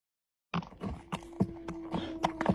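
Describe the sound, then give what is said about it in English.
A horse's hooves clip-clop at an even walking rhythm as a man rides it on his property, coming in from setting up trail cameras; moderately loud, with a faint steady hum running underneath and no voices. “I'm going to show a TikTok video of a guy setting up trail cams on his property. He's riding a horse.”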